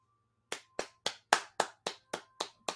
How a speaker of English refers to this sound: Got to applaud that one. So, a bit of a congratulatory moment for both the creators and the platform.